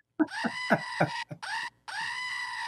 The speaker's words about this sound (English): Look, cowbell for you. I'll give you a little goat noise too.